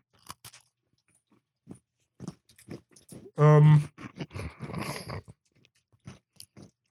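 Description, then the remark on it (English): Crisp crunches and chewing of a jammy biscuit snack from a packet pictured with red Jammy Dodger bits, scattered sharp crackly bites, then a brief loud hummed voice sound followed by a denser burst of munching that fades to faint clicks. “I should have shoved it all in my mouth. Yeah, I just saw you inhale it.”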